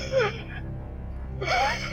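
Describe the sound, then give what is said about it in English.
A voice imitates a man's labored, wheezing breathing: two strained, raspy gasps, one near the start and one after a brief pause, moderately loud with no words spoken. “I still remember hearing the guy's breathing. I think he might have had a collapsed lung or something, because he was like...”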